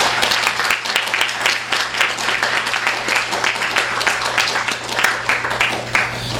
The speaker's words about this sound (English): Let's give them both a warm round of applause.